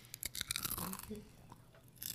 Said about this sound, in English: You chew so much more loud. You eat with your mouth open, that's why.